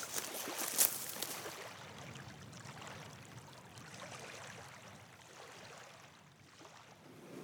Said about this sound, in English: the gondola is getting quite close. The steam is floating in little wafts westward